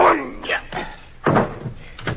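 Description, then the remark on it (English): A door slams shut with a sharp thud partway through, set among a few short bursts of muffled voices and shuffling. “I open the door for you. Just throw him in.”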